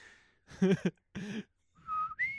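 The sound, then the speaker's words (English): A person whistles a short call: a steady high note, two fuller warbling bursts, then a lower note that jumps up to a high one. It imitates a ship captain's signal whistle, moderately loud. “I just wanted him to pull out the little whistle and have each of his Klingon officers step forward.”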